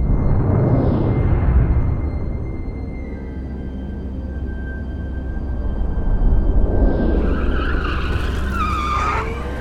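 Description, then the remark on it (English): Self-driving smart cars roar and skid as they chase the car in front, tires squealing in sharp, sliding wails that swell near the end over a constant low engine rumble. No one speaks. “Those are self-driving smart cars, still up and running. Ha! It looks like they're chasing the one in front.”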